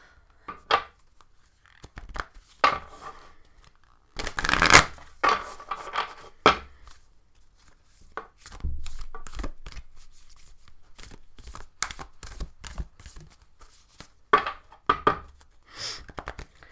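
Illustrated Herbiary Oracle cards, by Maya Toll and illustrated by Kate O'Hara, being shuffled: a series of papery slaps and riffles, with a denser flurry partway through, then scattered sharp taps and flicks. No one speaks.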